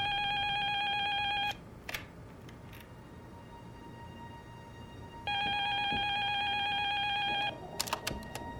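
A landline telephone rings twice, each electronic ring lasting a second or two with a long pause between, followed by a few soft clicks. No one speaks.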